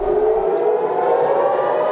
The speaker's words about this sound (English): Sirens blare across southern Israel as rockets from Gaza streak across the sky.